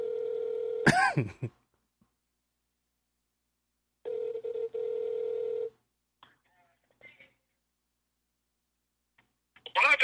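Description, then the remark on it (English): A phone's ringback tone plays over a speakerphone: a short ring partly covered by a cough-like burst, then a clean steady ring of nearly two seconds, followed by quiet rustles and a voice. “Is it on speaker? It is. It hasn't started ringing yet.”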